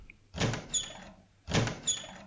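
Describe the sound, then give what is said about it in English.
A locked door rattles twice as someone tries to open it, two short, fairly loud jiggling bursts separated by a brief pause, with no voices. “Open this door is locked.”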